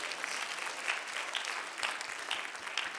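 A crowd claps steadily for a few seconds, a dense, even patter of many hands at moderate volume with no voices over it.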